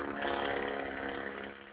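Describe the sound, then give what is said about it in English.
A loud, riced-out modified car roars past through a neighborhood, its raspy, buzzing engine holding a steady, harmonic-rich drone before easing off slightly at the end. No one speaks. “That was like some riced out Mexican car.”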